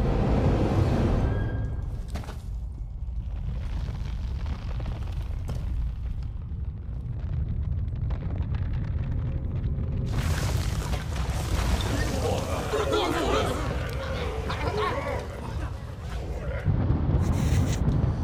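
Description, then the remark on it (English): A deep, continuous rumble of a big city blowing up in the distance rolls throughout, swelling into a louder, crackling blast midway before settling back into a heavy low roar. “He almost looks confused as he's like looking out the window at the big city like blowing up in the distance.”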